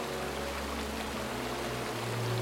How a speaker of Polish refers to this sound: Na dnie wił się obfity górski strumień, z szumem podążając do Dunajca, którego kilka zakrętów widać było opodal na prawo.